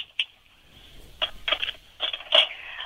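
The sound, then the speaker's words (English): Mahjong tiles being mixed on a table, heard through a phone as irregular bursts of hard clacking and rattling, louder toward the end, over a thin, steady high hum. Nobody speaks. “Can you, like, mix them around and see if I can hear it through the phone?”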